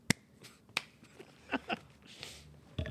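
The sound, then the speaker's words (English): A handful of sharp hand claps, about five, land at uneven intervals, each a crisp, bright smack with quiet pauses between them and no voices. “Now what happens? We clap. We clap.”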